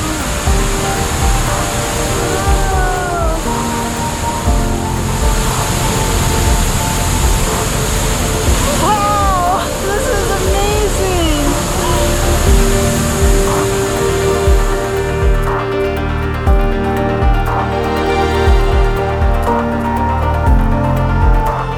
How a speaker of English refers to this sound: We got in the water and we wanted to get under the waterfall.